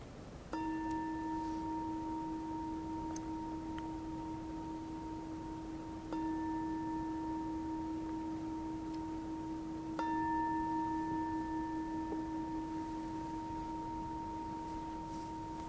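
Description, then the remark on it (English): A meditation bell is struck three times at the end of a guided mindfulness meditation, each strike ringing into a long, steady, mid-pitched tone that overlaps the next. It is fairly loud and heard alone, with no talking. “And then as you hear the bell, you can open your eyes.”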